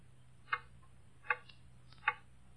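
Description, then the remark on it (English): A clock ticks steadily, three crisp, evenly spaced ticks standing out clearly against a low background hum, moderately loud with no one talking. “Hear that clock?”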